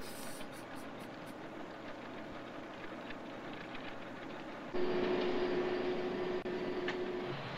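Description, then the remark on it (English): A special parcels train to Cardiff rumbles steadily at Mayfield station in Manchester, a dense low mechanical roar. Partway through it grows louder and a sustained droning engine tone sets in and holds almost to the end. No one speaks. “Over at Mayfield, Mrs. Price's cleaner is taken to its train.”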